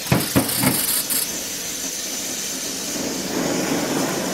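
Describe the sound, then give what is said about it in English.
A Pocket Rocket portable camping stove burner, lit with a lighter in windy conditions, flares with a loud, steady roaring hiss, broken at the start by a few sharp pops and bursts before settling into a continuous rushing blast. “This one's definitely lives up to the name of Pocket Rocket.”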